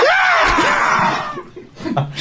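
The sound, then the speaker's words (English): A voice lets out a loud, exaggerated imitation of the Howard Dean rally victory scream, one long strained yell that swoops down in pitch, followed by brief scattered vocal noises. “Do the Howard Dean scream to make everyone happy.”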